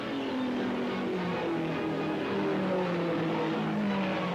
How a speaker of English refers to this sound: 23 cars on the Motor Speedway at Indianapolis get the starting flag in the annual 500-mile classic. It's 130 degrees on the track as the drivers push their cars around the seared brick and asphalt oval at 170 miles an hour.